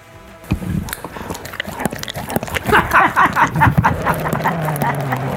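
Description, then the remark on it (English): A person imitates a dog, letting out a rapid, loud run of short nasal yips and growly barks with no spoken words. “turned into a dog. Finally, the dog pound prophecy has happened. How are you today, dog?”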